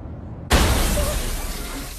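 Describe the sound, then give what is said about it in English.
After a brief quiet moment, a sudden, loud car crash erupts with glass shattering as a driver who passed out at the wheel crashes her car; the harsh, crunching noise carries on and slowly fades. No voices are heard. “Pushed to the limit and hardly sleeping, Kim passes out at the wheel, crashing her car.”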